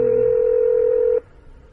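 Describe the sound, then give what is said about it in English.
A telephone line's ringing tone: one steady, clear electronic tone held for just over a second, then cut off into faint line hiss. No talking. “Oh, it's ringing. It's ringing.”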